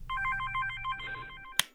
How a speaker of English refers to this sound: The phone rings. She takes her phone out of her bag and answers the call.